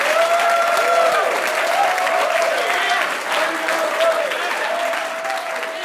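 A crowd applauds steadily, a dense wash of clapping that stays loud throughout, with a few faint tonal whistles or cheers riding above the noise.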